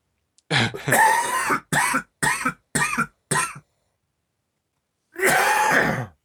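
A loud coughing fit: one long harsh cough, then four quick coughs in a steady rhythm, a stretch of silence, and a final drawn-out cough.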